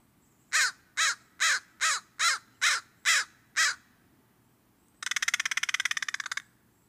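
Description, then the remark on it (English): An American crow, species name brachyrhynchos, a short-billed corvid, caws eight times in a steady, evenly spaced series, loud, then gives a brief harsh rattling call. No voices. “American Crow”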